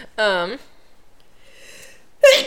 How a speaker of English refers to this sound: I'm tired of sneezing.